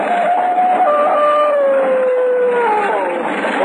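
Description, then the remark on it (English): Several dogs howl together, their long wavering cries overlapping and sliding slowly downward in pitch, loud and continuous with no pauses and no voices. “It flashed through the town and up the road leading to the castle, and in the back of it, the devil dogs ran, snarling and howling.”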